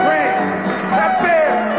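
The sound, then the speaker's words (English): A loud audience shouting and cheering at the end of a concert, in the last seconds of the show just before the final curtain fell at 10:45. Many overlapping voices merge into a steady roar, with a few higher yells rising above it throughout. “Here was the last seconds of the show just before the final curtain fell. It was exactly at 10:45, right exactly on time.”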